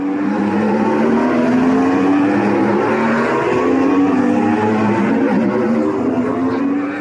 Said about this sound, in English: These electric-powered Formula E racing cars sound very different to their Formula One counterparts, although they look identical. The E cars, though, are a bit slower, reaching top speeds of 320 kilometers per hour.